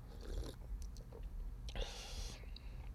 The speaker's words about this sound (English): It's 2 ounces fucking gin and half an ounce of vermouth and half an ounce of olive brine, stirring over ice and served in a chilled glass as per their directions. Let's take a little sippy sip.